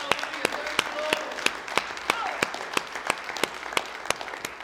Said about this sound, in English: Come on and give Him a hand clap of praise together.